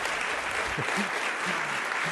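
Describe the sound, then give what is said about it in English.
Steady applause from a debate audience for Gail Heriot after her statement on affirmative action, a dense wash of many hands clapping at an even, sustained level with no talking over it. “And the round of applause for that.”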